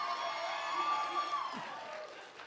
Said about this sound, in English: Our children's department is cheering me on loudly right now.